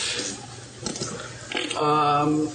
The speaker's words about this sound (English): Is that the bubbling acid pit? Yep. It's that bad. Listeners at home, the scary thing is he's not making those with his mouth.